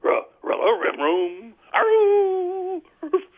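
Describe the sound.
A voice imitates a dog: a quick run of yapping barks and whimpers, then a long, wavering, howl-like whine and a brief final yip.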